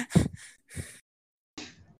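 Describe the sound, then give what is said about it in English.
A few sharp, breathy sneezes in quick succession, each a sudden burst of noisy air followed by a brief pause, fairly loud and with no talking around them. “Bless you.”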